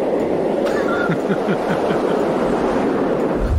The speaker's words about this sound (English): So while you're flying around, instead of having this, you know, kind of synthesizer fakey thing, they actually took real life sounds. Oops. It's an actual jet plane flying.